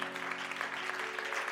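Hands clap in a dense, steady patter that fills a reverberant room, moderately loud and continuous throughout, with a faint sustained tone humming underneath.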